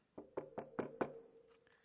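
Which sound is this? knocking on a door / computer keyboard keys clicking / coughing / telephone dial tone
knocking on a door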